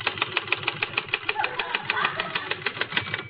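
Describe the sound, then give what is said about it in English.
A voice mimics a typewriter clacking away, a rapid, steady train of sharp clicks about six or seven per second, kept up evenly for a few seconds with no words. “See, you just bend over the typewriter like this, and you go...”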